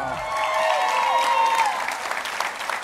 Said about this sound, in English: Would you please put your hands together, scream as loud as you can, and welcome